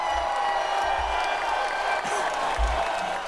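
A steady wash of crowd applause and cheering, dense clapping holding an even level for a few seconds, with faint whoops mixed into the noise and no one speaking over it.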